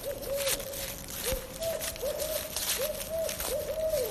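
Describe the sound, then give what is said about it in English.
Barred owls hoot repeatedly in quick, overlapping calls, some rising and falling like a raucous exchange, heard over a steady hiss of outdoor background noise with no one speaking, in woods in western Washtenaw County, next to an open area. “Hiking through woods in western Washtenaw County, we encounter barred owls next to an open area.”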